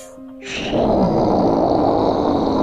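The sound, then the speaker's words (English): A deep, rumbling roar of an adult black dragon that has landed on the roof of the Inn of Ill Omen bursts in after a brief low hum and holds loud and steady to the end, a broad, growling bellow with no talking. “Lets out a mighty roar.”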